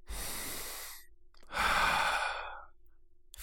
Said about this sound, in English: take a deep breath.